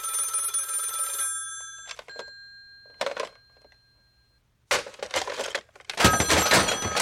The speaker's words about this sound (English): Mr. Bailey, the phone.